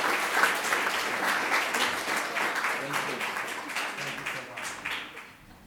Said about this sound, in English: another round of applause as he leaves.